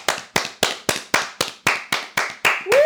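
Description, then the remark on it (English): A steady run of about eleven sharp, even-paced hand claps, crisp and fairly loud, with a high voiced whoop rising in at the very end. “Like, can we just do a clap for how good of a lay he is?”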